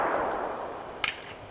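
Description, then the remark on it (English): The rumbling echo of a gunshot fired without a suppressor fades steadily, broad and hissy, with a faint, sharp ping briefly cutting through near the end. No one speaks. “You really hear the echoing.”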